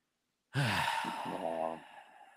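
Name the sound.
sneeze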